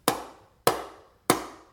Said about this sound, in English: After a long walk, he stood in front of the faded brick house and knocked 3 times.